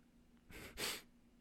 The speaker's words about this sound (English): The yawn was not indicative of my reaction to the game.